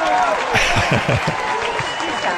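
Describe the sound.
A round of applause from a crowd, a dense, steady patter of many hands clapping at even loudness, with a few murmured voices and whoops mixed in underneath.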